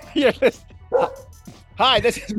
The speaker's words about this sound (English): You're listening to The Sean Newman Show and a chorus of dogs barking.